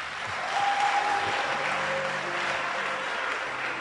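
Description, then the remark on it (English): Steady applause from a crowd in a church, a dense wash of many hands clapping at an even level throughout, with a faint tonal hum beneath it and no one speaking. “I thought you clapped for me.”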